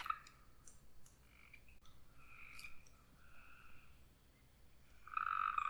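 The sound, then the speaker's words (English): Tree frogs croak in a loose outdoor chorus, repeated chirping calls overlapping, with one louder call rising near the end. No one speaks. “Do you hear that? The tree frogs are coming out.”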